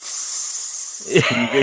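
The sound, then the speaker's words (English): A steady, fairly loud sizzle like food frying on a hot grill runs throughout, heard alone at first before a voice starts talking over it. “Can you hear the sizzle? Something's cooking.”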